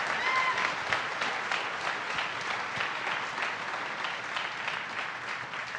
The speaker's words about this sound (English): and one more round of applause for my guests